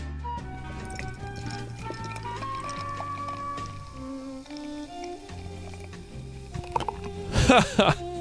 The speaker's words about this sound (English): And as is tradition on the show, I'm going to pour it, and it's going to sound bad.